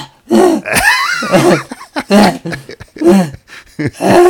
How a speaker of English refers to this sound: Oh, my God. Oh, my God. He gasps. Oh.